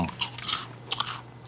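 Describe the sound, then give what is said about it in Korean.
Crisp, crunchy bites and chewing of a light, low-calorie Juni Cookie handmade meringue cookie, several short crackly bursts in quick succession with no talking, over a low steady hum. “주니 쿠키 수제 머랭 쿠키 여러분 지금 바로 구매해 주시기 바랍니다”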